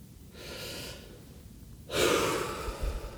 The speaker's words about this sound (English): Just keep breathing deeply. Keep breathing in.